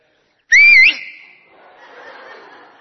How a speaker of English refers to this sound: I tell you what, I can whistle. You may have to turn that down slightly. Right, ready?